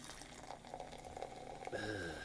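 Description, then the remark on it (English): Strongbow hard cider, a very effervescent, slightly cloudy golden drink made from apples, pours into a glass, a steady bubbling hiss with a pitch that climbs as the glass fills over a couple of seconds. “And the pour.”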